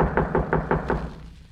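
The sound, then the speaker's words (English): A quick series of five firm knocks on a wooden door, evenly spaced, the last one slightly louder before the sound fades into quiet. “Well, I'll go ahead and knock at the door while you get your camera.”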